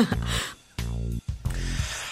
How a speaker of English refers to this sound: I've been waiting to cough for so long.